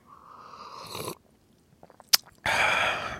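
An airy slurp as someone sips tea while walking around a backyard in the morning, then a short pause, a small click, and a second longer breathy sip or exhale. No talking.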